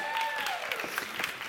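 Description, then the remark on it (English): A crowd claps steadily for two assistants, a dense wash of overlapping hand claps, while a faint whistle-like tone glides downward in the background. “Give them a round of applause.”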